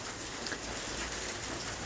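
Steady rainfall patters continuously outdoors, a dense, even hiss of drops striking surfaces at moderate loudness with no voices present.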